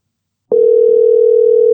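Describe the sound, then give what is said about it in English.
A steady telephone dial tone hums for just over a second as a phone call is placed, one unbroken, fairly loud note that starts and stops abruptly, with nothing else around it. “I need to make a phone call because there's a lady who needs to hear this chapter who has no idea of how important of a role she plays in the story.”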